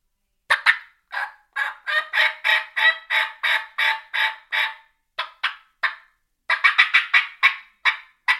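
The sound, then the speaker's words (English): A loud, rapid series of raspy turkey yelps and clucks made on a mouth call while trying to locate birds, in quick rhythmic bursts with a brief pause before another run, no talking. “And so I may start out on a mouth call.”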